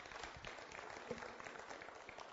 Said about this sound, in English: Yeah, give her a round of applause for putting up with me.